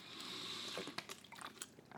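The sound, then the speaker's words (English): Water pours steadily for a moment, then breaks into a few irregular splashes and drips as the flow stops. Quiet, with no voices. “Oh, water. Nice.”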